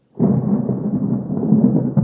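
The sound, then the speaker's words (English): A loud thunder clap following a big bolt of lightning bursts in suddenly after a moment of silence, then rolls on as a deep, heavy rumble that stays strong to the end, with no voices. “Ooh, big bolt of lightning. That's going to be loud. Wait for it.”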